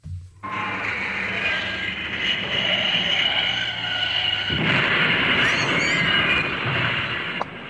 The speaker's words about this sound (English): straight across the high street, straight into the path of an oncoming tractor. Shall see if I've got that sound effect. I hope so.